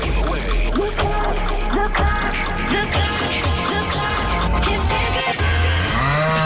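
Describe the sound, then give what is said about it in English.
A cow moos over loud, busy background music in a Cork's 96 FM 'cash cow' radio promotion, the drawn-out bellow rising clearly near the end and standing out against the steady musical bed. “Take on the Cork's 96 FM cash cow.”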